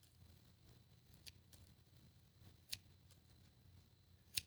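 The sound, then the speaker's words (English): Scissors snip open and shut a few times, each a sharp metallic click spaced about a second or more apart, over a quiet, low background hum. “Opening and closing scissors.”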